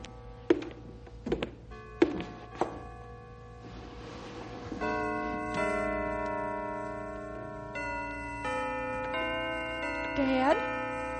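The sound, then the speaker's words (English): A few knocking thuds give way to church bells being played in a slow tune, sustained overlapping tones that hang in the air, fairly soft. “Dad, the bells are playing. Herman's playing the bells for you.”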